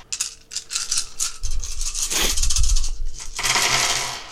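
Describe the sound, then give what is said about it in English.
Several black and purple dice are rolled in a game, clattering and tumbling across a hard table surface, a busy rattle of small objects bouncing and rolling before settling, with no voices over it. “Full cover gives him 2 more black dice. So 4 black dice with your purples.”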